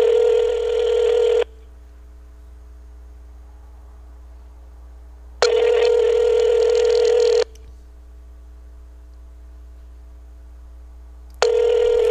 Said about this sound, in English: I can call the number right now. I'm going to call it right here on the air. Okay, turn the speaker on. Here it goes. You ready? Listen to this.